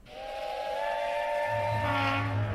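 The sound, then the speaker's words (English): A loud, sustained steam train whistle sound effect blows with steady harmonic tones, joined midway by a low rumbling chug of the train, with no voices. “And let's roll straight into the Lame Train.”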